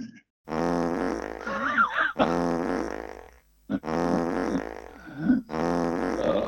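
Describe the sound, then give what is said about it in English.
A whoopee cushion lets out four long, buzzy raspberry blasts, each about a second and a half, with a wobbling, bending pitch and short gaps between them. No one speaks. “The old whoopee cushion.”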